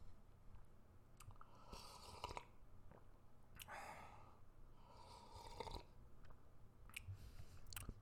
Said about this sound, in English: And time for a coffee sip. This is also a good way to gather my thoughts without flubbing. Taking another coffee sip.